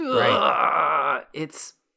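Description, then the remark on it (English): A man, the actor Molina, lets out a strained, trembling groan for over a second, its pitch quivering as he acts being electrocuted, then a short grunt and a breathy hiss. “just yeah, like plus how long that Molina is just sitting there doing the like scream noise, effort noise of the like shaky body acting.”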